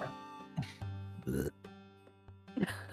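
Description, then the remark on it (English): A long, low, gurgling burp rumbles for a few seconds after eating venison, with rough, croaky bursts breaking through a steady guttural drone. “… burped the venison.”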